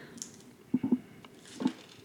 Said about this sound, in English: that's a water bottle falling down on an ashtray.